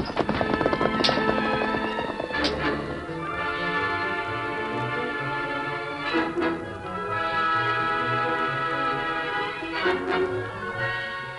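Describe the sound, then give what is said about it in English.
Rhythmic hoofbeats of horses galloping as a group of riders sets off on horseback, a steady drumming pulse running under loud orchestral music that swells throughout, with no voices. “Come on, get on your horses, both of you. All right, boys, let's go.”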